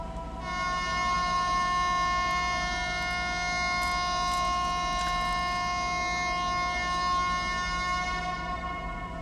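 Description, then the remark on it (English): A loud, sustained air horn blast blares continuously for about nine seconds, a harsh, steady, harmonic-rich tone with no one speaking; a father holding a handheld air horn upward toward the sky sets it off without warning inside a tent with his family. “Or not having a warning when my dad just let loose of that air horn inside the tent with all of us?”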